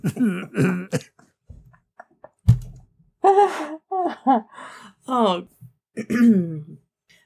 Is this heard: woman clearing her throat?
yes